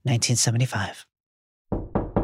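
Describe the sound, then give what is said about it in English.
A voice speaks briefly, then after a short pause come three firm, evenly spaced, fairly loud knocks on a wooden bedroom door. “Sirius! Open the door, I'm coming in.”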